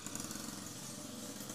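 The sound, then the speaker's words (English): A motorbike engine drones steadily, a low buzzing rumble with a rough, rattling edge and a faint hiss on top, holding an even level throughout with no voices. “The motherfucking motorbike.”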